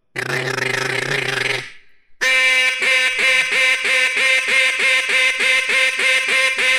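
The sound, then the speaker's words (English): A duck call blown to mimic a mallard hen, as done at the duck-calling contest in Stuttgart: a long nasal honk, a brief pause, then a rapid, evenly spaced series of loud reedy quacks repeating about twice per second, with no talking. “They'll take a duck call. This is supposedly a mallard hen sound, and they'll go.”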